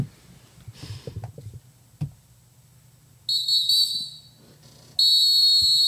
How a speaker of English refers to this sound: Sassy whistle.